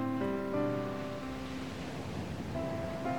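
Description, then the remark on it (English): Ocean waves wash steadily onto a beach, a soft continuous surf beneath sustained, gentle musical tones, with no speech. “Listen to the waves and connect with God through His creation.”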